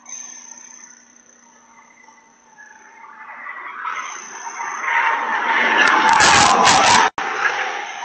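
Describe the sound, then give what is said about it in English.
Tires screech and skid as a car doing 90 in a 20 brakes hard, the noise building loudly over several seconds before a sharp crash impact cuts it off abruptly, with a steady insect-like hum in the background. “Here's a crash. Here it comes. Crash. That's what 90 and a 20 looks like. Sounds like.”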